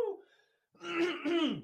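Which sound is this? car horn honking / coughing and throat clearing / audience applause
coughing and throat clearing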